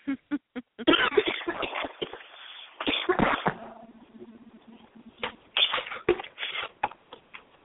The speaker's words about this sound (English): Are you okay over there? Oh, yeah, just the same cough I've been nursing for the last month, paying no mind.